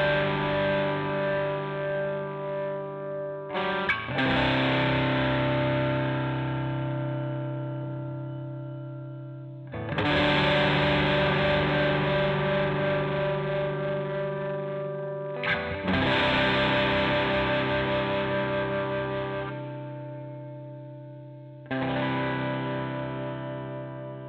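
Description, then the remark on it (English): A distorted electric guitar plays thick, sustained power chords for a song's chorus, with a new chord struck every five or six seconds and left to ring loud and gritty, with no voices. “I also added another guitar with distortion to give the chorus a little bit of an explosive energy.”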